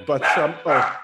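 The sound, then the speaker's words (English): A dog lets out two quick, loud barks in a row in an apartment, with a whiny, yelping edge and a short gap between them. “Sorry, the dog.”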